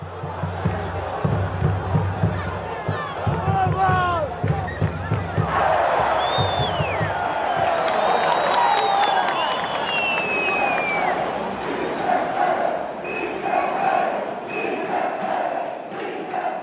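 A roaring stadium crowd of sports fans screams, chants and sings together, with heavy rhythmic thumps of huge 10-foot drums driving the first few seconds and piercing whistles and shouts cutting through the dense, continuous din.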